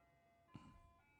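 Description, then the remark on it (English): A tinny ice cream truck jingle plays in steady sustained tones outside a studio in downtown Los Angeles, with a brief low rumble of passing traffic partway through and no talking. “Man, this studio in downtown LA, man. I mean, the ice cream trucks are just plentiful, you know?”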